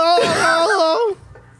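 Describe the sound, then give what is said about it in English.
A voice mimics a choking goat with a strained, warbling bleat that wavers up and down in pitch for about a second, loud and alone, then cuts off abruptly into near silence. “And then choking a goat.”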